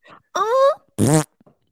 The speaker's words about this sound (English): I thought the cute noise fart was a good out.